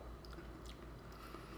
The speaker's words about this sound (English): Maybe have a little sip of water.